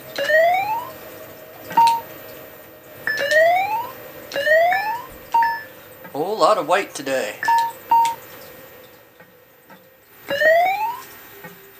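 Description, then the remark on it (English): A fire truck siren in repeated short rising whoops, each followed by a brief high beep, cycling steadily about once a second while a person talks briefly midway. “This one's gonna be tough. The fire truck.”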